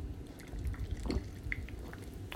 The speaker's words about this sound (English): I am currently drinking a sparkling water with lime in it because I'm that weak. I can't just drink plain water. I need my water carbonated and I need it to have some lime.